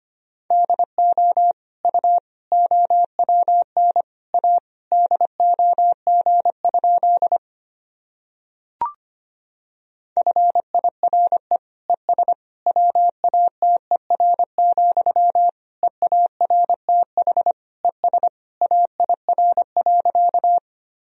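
Morse code practice tones at a brisk 25 words per minute, sending practice sentences: a single steady mid-pitched beep keyed into quick dots and dashes, with a pause and one brief click between two long runs.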